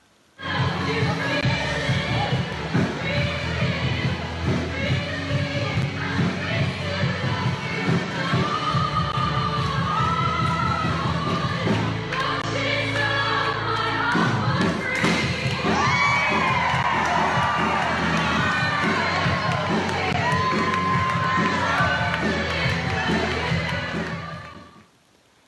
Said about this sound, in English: And remember some of the celebrations that we've had the last few years with balloons and confetti cannons. Have a look at this as a reminder.